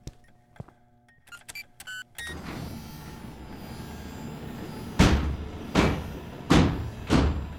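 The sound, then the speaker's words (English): A few clicks and electronic beeps, then a steady mechanical whir as a heavy security door slides shut, ending in four loud, evenly spaced metallic clunks. “The security door is for your protection, as is this meeting.”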